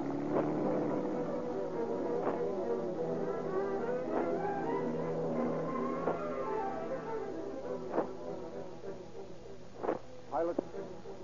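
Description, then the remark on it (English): A mail truck driven by bandits and the robbers' car following closely behind drive off together, their engines droning steadily with shifting tones, fairly loud, with a few sharp knocks toward the end. “Piloted by the bandits, the mail truck is driven 12 blocks, closely followed by the robber's car.”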